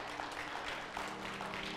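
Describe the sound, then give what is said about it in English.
A crowd applauds steadily, a dense patter of many hands clapping at once with no single claps standing out, at a fairly even loudness throughout. “You can clap.”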